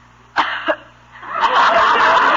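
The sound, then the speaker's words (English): Two sharp coughs in quick succession, phony and deliberate-sounding, followed by a longer stretch of rough, sustained noise with no talking. “if you start that phony coughing again”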